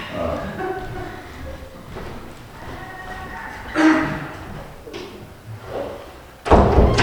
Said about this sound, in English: I'm going to shut this door.